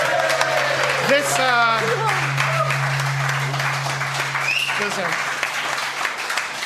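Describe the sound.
A live show audience applauds a guest in the building, a dense wash of steady clapping with some cheering or whooping voices rising over it near the start and again toward the end.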